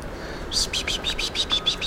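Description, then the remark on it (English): A grey fantail moving around a small sapling in gardens calls with a quick series of high, thin squeaky chirps in an uneven rhythm, over a steady low outdoor hiss. “That's grey fantail.”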